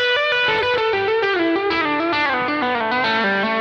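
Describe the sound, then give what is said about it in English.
A distorted electric guitar plays a fast, smooth descending E minor pentatonic run in the open position, with legato pull-offs stepping down the scale pattern before sliding back up to E, loud and continuous with no one talking. “And I end here in the open position, so now I'm an octave lower, E minor pentatonic pattern one in the open position, and I kind of finish it off with some pull-offs down here, going down the scale pattern, and then I slid up back up to E.”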